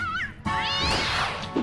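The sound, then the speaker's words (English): A cat summoned by the Kitty Catastrophe expansion chip yowls and snarls in a short, loud burst as it attacks the robot Pharamon, its rising cry mixed with sharp whacking impacts like a scuffle against metal. No one speaks. “Yeah, his chip turned into a cat that attacked Pharamon.”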